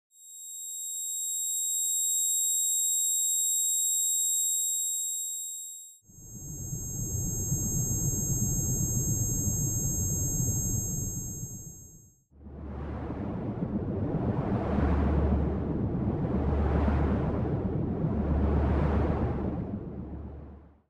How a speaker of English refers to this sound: Let's start off with kind of what is this noise? I'm going to play some examples for you or some emulations of what tinnitus might sound like.